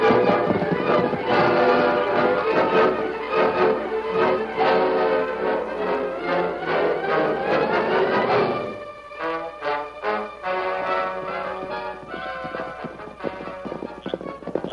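Horse hooves clop in a steady rhythm, with a horse whinnying in answer to another horse named Silver, amid a dense, sustained tonal backdrop that gives way to clearer, separate hoofbeats.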